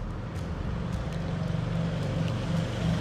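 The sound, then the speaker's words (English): Steady engine rumble from motorcycles and cars driving past a backyard, a low droning motor with a faint whine layered over continuous outdoor noise, moderately loud and unbroken throughout, with no voices. “As I sit out here in my backyard and motorcycles and cars are driving by”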